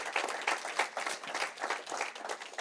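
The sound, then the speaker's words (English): A church audience applauds God the Father during a sermon, many hands clapping steadily in a dense, continuous wash of bright, crackling claps at a moderately loud level with no voices on top. “Come on, give the Father a round of applause.”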